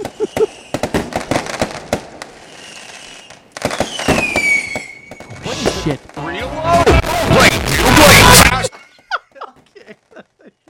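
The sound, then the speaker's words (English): Fireworks going off outside crackle and pop in rapid, irregular bursts, with a piercing whistle sweeping down partway through, then a loud, dense crackling barrage that cuts off abruptly. Voices can be heard underneath. “Those fireworks are still going off.”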